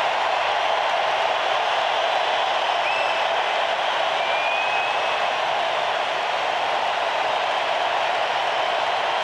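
A stadium crowd roars in a sustained ovation for Houston Astros pitcher Gerrit Cole as he is taken out of the game after 7 2/3 innings. It is a dense, steady wall of cheering and applause that holds at a loud, even level for the whole stretch, with no one speaking over it.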